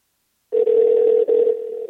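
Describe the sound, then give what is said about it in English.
A steady electronic telephone tone sounds on its own after a short silence, holding one even pitch with a brief break midway, fairly loud, before the call is answered. “Thank you, phone right here.”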